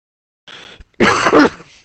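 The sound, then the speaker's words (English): A loud cough bursts out once, preceded by a softer raspy breath, then trails off into a brief exhale. No one speaks. “It was a cough, but thanks.”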